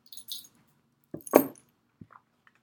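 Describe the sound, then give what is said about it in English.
A metal Time Turner pendant necklace clinks and rattles as it is taken off, a few quick light jangles with one brighter clatter in the middle, then a faint final click. “I have to just take off my time turner really quick because it's clicking and clacking around as I move.”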